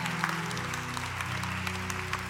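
A steady round of applause, many hands clapping in a dense, continuous patter, with a sustained low hum running underneath throughout.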